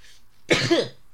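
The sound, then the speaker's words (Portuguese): A single sneeze erupts after a short quiet pause, a loud, breathy burst with a voiced, pitched catch in the middle, lasting under half a second before trailing off. “Oh, vou espirrar, eu vou espirrar, eu vou espirrar, eu vou espirrar, eu vou espirrar, espirrar.”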